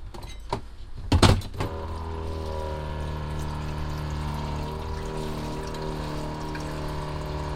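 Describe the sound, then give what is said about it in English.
A couple of clunks as a water pitcher is set down on its dock, then a small electric pump motor starts and hums steadily, pumping the water in with a continuous whir. “Once it's docked, you'll hear the motor begin and it will pump that water in, and you'll be able to hear when it's done.”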